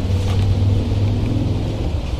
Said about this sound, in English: Is that car back there? Is that part of it?